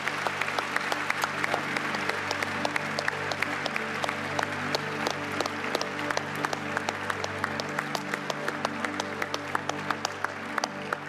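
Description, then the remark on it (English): A crowd claps steadily and enthusiastically for several seconds, dense, sustained applause with sharp individual claps standing out, as people stand to honor fathers and spiritual fathers at a church gathering. “And we're going to honor you and give you some applause to cheer you on in this amazing journey of parenting.”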